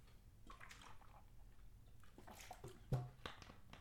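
Someone drinks water: soft, wet sipping and swallowing sounds, a few quiet bursts with a slightly louder gulp near the end, and no talking.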